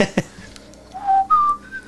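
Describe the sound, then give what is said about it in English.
A person whistles a short, clear melody of a few sustained, gliding notes, imitating an ocarina tune from Zelda, after a couple of brief soft knocks at the start. “Here's your ocarina. Yeah. Make sure you play the notes right.”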